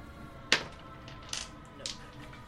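A die drops onto a hard table with a sharp clack, then bounces twice more with lighter, quieter clicks before settling. Nobody speaks over it.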